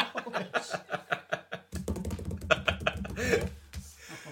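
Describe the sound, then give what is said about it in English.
Frantic, rapid clattering of computer keyboard keys being bashed while playing the video game Daley Thompson's Decathlon, the clicks coming fast and uneven, with a low steady hum joining underneath halfway through. “Knack of your keyboard playing Daley Thompson's decathlon.”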